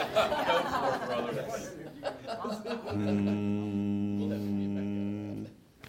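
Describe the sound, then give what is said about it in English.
A few seconds of soft chuckling and murmuring give way to a single long, steady, low-pitched, off-key hum imitating meditation, held for about three seconds before fading. “That is not meditation. That is humming off key.”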